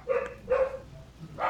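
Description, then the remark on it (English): A dog barks twice in quick succession, each bark clear, with a third bark just starting as the sound cuts off. No one speaks. “And sometimes he even makes dogs bark.”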